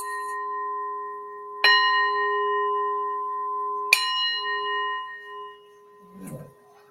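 A small bell is struck twice, a couple of seconds apart, each strike leaving a clear, sustained ring that lingers. A brief muffled rustle follows at the end.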